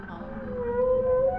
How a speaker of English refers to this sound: How do I describe whale song? It's like an acoustic masterpiece to me. It's like if you had all these puzzle pieces and you had them spread out on a table and every puzzle piece had its own little sound to it and you started putting it together.